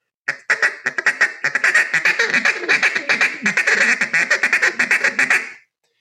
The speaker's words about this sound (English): More pressure is what you're doing in a duck call in order to get more aggressive with it.